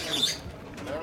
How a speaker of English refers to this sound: We begin at our hotel on the peaceful banks of the Niger River with the sound of cackling birds.